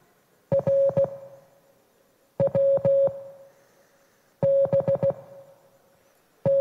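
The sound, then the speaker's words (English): Morse code played on an old tape player from a cassette as a puzzle in the game Escape the Room: a steady mid-pitched tone keyed in short and longer beeps, arriving in clustered groups separated by pauses, each pulse starting with a sharp click, with no talking. “So yeah, over there we're using some Morse code, actually using the audio platform to provide the puzzle for you.”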